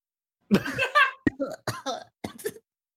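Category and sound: human body sound, coughing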